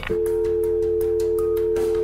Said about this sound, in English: The Prime Minister sounded like he was about to say a bit more, but his media advisor quickly grabbed the phone and slammed it down, signalling that the interview was over.